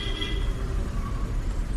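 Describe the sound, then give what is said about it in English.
A large moving bus on a road in Thailand rumbles steadily as a shirtless man runs headlong into it, its deep engine drone filling the whole stretch, with a faint high-pitched brake squeal at the start. No one speaks. “he just runs headlong into a moving bus.”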